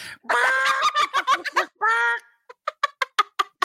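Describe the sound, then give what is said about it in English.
A person imitates a chicken, with a burst of loud clucking and a drawn-out squawk followed by a run of short, rhythmic clucks that taper off. “And then I go like this, 3, 2, 1, you're a chicken.”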